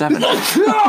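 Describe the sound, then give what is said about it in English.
A single quick sneeze, fairly loud, a short sharp burst of breath amid people talking. “Bless you.”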